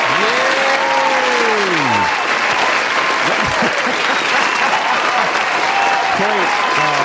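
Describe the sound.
A crowd applauds loudly, a dense, steady wash of hand claps lasting several seconds, with a few voices whooping and cheering over it at the start and again near the end.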